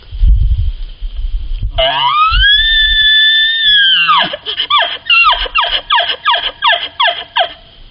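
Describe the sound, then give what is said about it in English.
An elk caller makes a high, whistling elk bugle that rises and holds for a couple of seconds, then breaks into a quick rhythmic run of about eight or nine descending chuckle grunts, loud and with no talk. “Give the chuckle one.”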